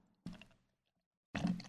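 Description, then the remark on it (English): Pressure Drop Brewing Dank Sinatra beer poured into a glass in two short, splashy bursts with a brief silent pause between them. The second burst is fuller and louder, and nobody speaks. “A little pour here.”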